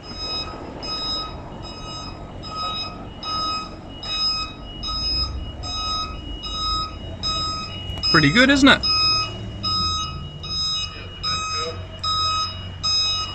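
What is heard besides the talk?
truck reversing beeps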